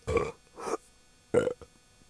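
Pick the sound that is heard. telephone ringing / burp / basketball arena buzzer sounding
burp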